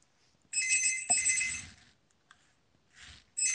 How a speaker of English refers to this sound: Somebody's getting a call by the sound of it.